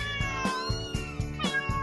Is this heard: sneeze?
no